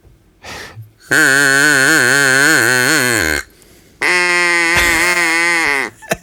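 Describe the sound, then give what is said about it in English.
An Acme duck call blown in two long, loud, reedy blasts with a wavering, bleating pitch, separated by a short pause, with a quick breathy puff just before the first blast. “What kind of duck have you got? I've got, the thing is, I do have the Acme duck.”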